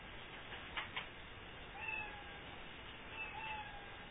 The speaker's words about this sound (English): Lots of sad kitties around our room right now. I don't know. I'm not a cat fan. I don't know if that's a sad meow or if that's a good meow.